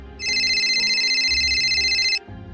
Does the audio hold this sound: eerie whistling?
no